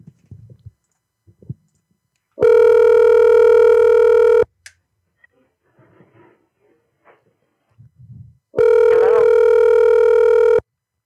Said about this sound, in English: I'm going to call the guy I called last night.